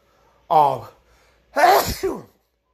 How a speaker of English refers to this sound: Sorry, I had to sneeze. Whoops.